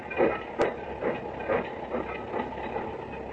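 train departing

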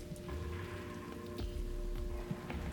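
rain falling

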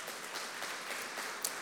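audience hand clapping

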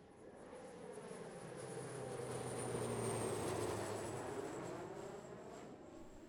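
airplane flying

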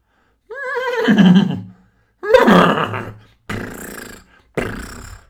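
horse neighing

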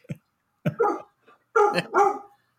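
dogs barking excitedly

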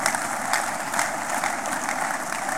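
audience clapping

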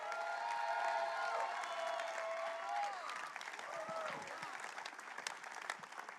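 audience clapping and shouting

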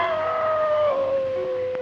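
werewolf howl

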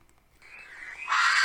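barn owl screech

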